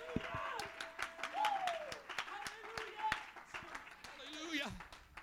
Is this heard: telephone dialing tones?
no